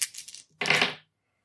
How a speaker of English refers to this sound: You can roll 3 dice. I pick good. Apparently. At least for this, anyway.